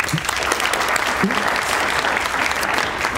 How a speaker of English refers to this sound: Please join me in making her feel very welcome with a very warm applause